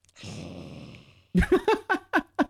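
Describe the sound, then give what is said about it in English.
A child's voice imitates a lion growl as a hello: a long, raspy, breathy rumble, then about six short, rhythmic voiced bursts in quick succession, fairly loud. “That's your hello, is a big, like, lion growl.”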